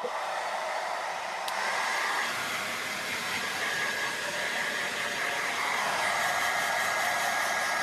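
A hair dryer blows steadily at close range, a continuous airy whoosh with a faint whine layered on top, holding an even level throughout with no voices.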